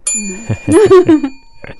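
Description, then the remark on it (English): A single bright bell ding, struck by a producer, rings out and sustains for about a second before fading, while voices talk or laugh over it. “A producer sitting in the background dinging the bell for us.”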